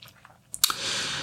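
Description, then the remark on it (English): A small bottle of White Angelica essential oil from Young Living being opened: a few faint clicks, a sharp snap of the cap, then a steady, soft rushing noise that continues to the end. No one speaks. “So I'm going to start by opening a bottle of White Angelica.”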